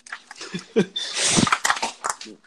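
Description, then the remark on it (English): Someone getting ice scoops it up in a burst of crunchy, rattling clatter with a few sharp clinks before and after, loud, with no talking. “are you eating chips, bro? You fucking up? No, man, I'm getting some ice.”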